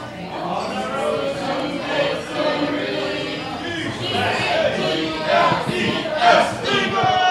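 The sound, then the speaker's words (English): A Philadelphia crowd in a bar, with beer flowing, sings together in a loose, rowdy chorus, loud and steady throughout, with shouts and swells rising near the end. “Sung, that's sung fine. Pretty much like a typical Philly crowd.”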